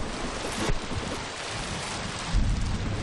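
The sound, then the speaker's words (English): A huge storm in the Central Pacific: heavy rain pours in a steady, dense hiss while low thunder rumbles roll in twice, once early and again near the end, with no voices. “On May 27th, in the Central Pacific, the Hansa Carrier was overtaken by a huge storm.”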